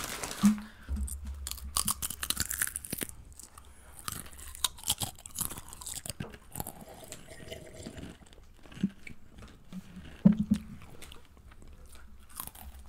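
Crisp chips from a bag being bitten and crunched close to the mic for ASMR, with a steady run of sharp, brittle cracks and chewing in irregular bursts, a few louder snaps standing out. No one speaks.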